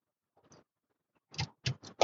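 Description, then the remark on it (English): A faint slurp of a sip of water, a brief pause, then three loud, rhythmic gulping swallows in quick succession, with no talking. “I'm a really loud swallower.”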